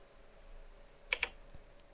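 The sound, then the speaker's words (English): Two or three crisp keystrokes tap on the keyboard of an old computer in quick succession, fairly quiet, as someone writes a letter, against a faint background hum with no one speaking. “He's over there typing on his old-ass computer.”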